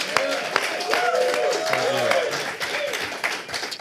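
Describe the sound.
A crowd on the show Tulsa Little Jam applauds a band steadily for several seconds, a dense crackle of many hands clapping, with cheers and whooping voices rising through it before it starts to thin out.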